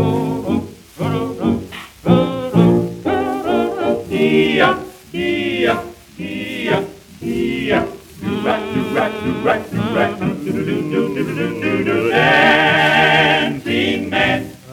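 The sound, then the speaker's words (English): A Victor record on the Batwing label from late 1925, an electric recording, plays lively music with harmonized singing voices over steady rhythmic backing, wrapped in a constant layer of surface hiss and crackle, fairly loud throughout. “So three Victor records on the Batwing label from late 1925, all good electric recordings”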